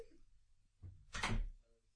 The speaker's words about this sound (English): Well, shut the door then. We don't want to bloody hear you.